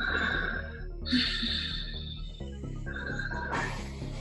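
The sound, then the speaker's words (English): Four short, airy breaths from the mid-chest follow one another in a steady rhythm, clearly audible, over a soft pulsing background with no talking; one set in a breathing exercise done as sets of four. “And you take it back and you start doing 4 shorter breathing from mid-chest, yeah?”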